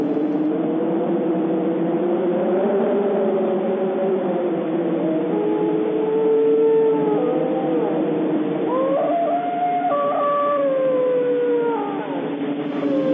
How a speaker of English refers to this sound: Howling. I agree. It is wolves call. I think it's one wolf calling. Well, yeah, one.